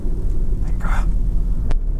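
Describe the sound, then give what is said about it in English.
A car brakes over a steady low engine rumble, with a brief squeal of the brakes midway and a short sharp click or clunk near the end. “Give us a little, whoa, now he's put on brakes.”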